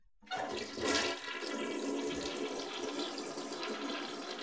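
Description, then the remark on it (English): A toilet flushes, a sudden rushing surge of water that swells briefly and then settles into a steady, loud gurgling wash with no talking. “That was what … by ….”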